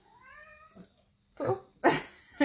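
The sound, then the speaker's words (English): A cat lets out a drawn-out, wavering meow, followed by three louder, harsher bursts of sound in quick succession. “The cat wants to weigh in.”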